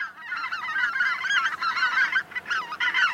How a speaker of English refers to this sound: Greater white-fronted geese nest in the high Arctic across North America and from Greenland to Siberia. In fall and winter, they can be seen in Texas, Louisiana, California, and Mexico.